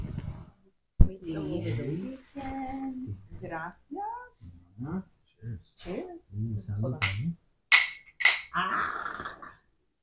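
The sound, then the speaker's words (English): Two or three bright glass clinks ring out in a toast, their tones briefly lingering, amid lively chatter from several people. “Cheers. Ooh, salud.”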